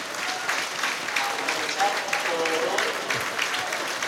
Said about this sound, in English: Well, Davis will replace Elliot Lee, who once again has run his heart out. He gets a terrific round of applause, and Mullin is replaced by Bickerstaff.